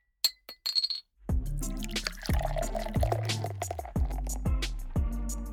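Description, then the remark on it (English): A few bright, quick glass clinks ring out at the start, then a loud rhythmic musical jingle with a deep bass line takes over for the rest, introducing a beer review segment. “Tink, tink, tink. It's time for a beer review. Tink. Clink, clink, tink, clink, on, clink.”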